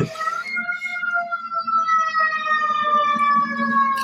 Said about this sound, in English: There's a fire truck coming up the avenue. That's okay. Living in downtown Denver. Here it comes.